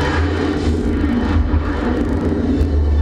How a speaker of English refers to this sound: Here's the worst shot in the movie. The worst special effects shot. Oh, yeah? Watch these planes.